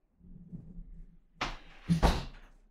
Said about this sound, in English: Can you shut the door? Thank you.